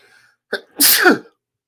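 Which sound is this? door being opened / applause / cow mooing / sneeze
sneeze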